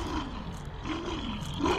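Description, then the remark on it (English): Late at night, a big wolf snarls and growls ferociously and loudly in a continuous rough rumble that swells at the end as it charges and leaps at a person. No one speaks. “The wolf charged and leapt at me.”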